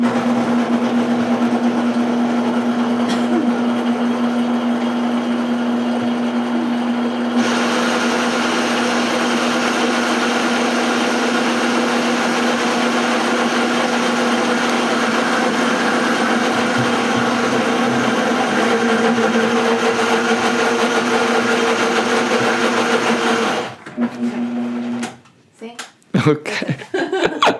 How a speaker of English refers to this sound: Just 1 second, okay. All right, run the blender. Hold on. All right. It's not going to take very long.